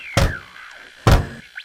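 Two heavy, booming thuds as a door is kicked, about a second apart, each a loud low impact that rings briefly, with a faint tonal hum and a small high chirp trailing after.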